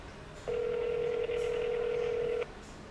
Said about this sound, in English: But we're going to call the shop right now, see what's going on. I don't have his cell phone number, so...